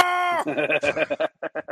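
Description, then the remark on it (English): A person briefly imitates a cow's moo as the punchline of an interrupting-cow knock-knock joke, a short, drawn-out voiced tone, then breaks into a quick run of choppy, laughter-like bursts, fairly loud. “Knock, knock. Who's there? Interrupting cow.”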